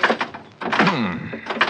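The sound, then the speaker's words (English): A stuck car door rattles and thunks as it is tugged repeatedly, with a straining creak in the middle; fairly loud, with no voices. “This door doesn't seem to want to... Trying to pull some trick? No. Open that door. Well, it's stuck, I guess.”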